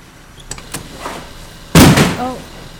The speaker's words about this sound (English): Environmental protection doors now closing. Remember, a door left open is an invitation for death.